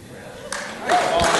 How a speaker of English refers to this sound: Yeah. So thank you for the applause.